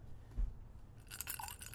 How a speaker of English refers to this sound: rolling the dice right here.